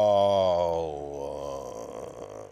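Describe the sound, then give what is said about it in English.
A fart sound effect: one long, buzzy low blat that starts loud, slides down in pitch and trails off into a raspy, fluttering rattle lasting a couple of seconds. “That's a fart. That's a fart.”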